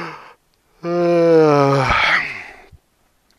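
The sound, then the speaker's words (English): A person voices one long, exaggerated yawn, starting as a loud drawn-out groan that slides downward in pitch and trails off into breathy air, heard alone. “He sat up in bed, stretched his extraordinary long arms, and yawned, enormous yawn.”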